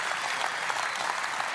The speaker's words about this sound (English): We have 300 volunteers that are signed up to serve this week. Can we give those guys and our students a round of applause?